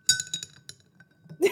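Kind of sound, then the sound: household object, ice cubes clinking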